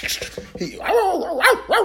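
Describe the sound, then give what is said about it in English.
A person vocally imitates a small dog running across a kitchen, starting with quick clicks like scampering feet, then a run of yappy, rising-and-falling barks and yips, loud. “Man, that mug jumped and hit me in my stomach and bit me and fell down and just started barking.”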